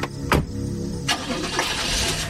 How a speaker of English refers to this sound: The smile faded, covering the jagged teeth, and he nodded to me just once before getting in his car and driving away.